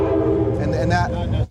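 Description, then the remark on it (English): A loud train horn blares in one sustained, droning blast over a low rumble from train tracks about 50 to 100 yards away in Oceanside, then cuts off abruptly after about a second and a half. “And we are right next to the train.”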